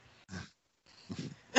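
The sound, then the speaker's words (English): Two short, rough coughs separated by a brief pause, the second slightly longer and breathier, then the start of a louder burst right at the end. No talking. “Cough there.”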